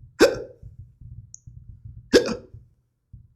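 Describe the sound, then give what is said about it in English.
Two sharp hiccups about two seconds apart, each a sudden gulping catch of breath, over a faint low rumbling background. “I got hiccups. Tengo hipo.”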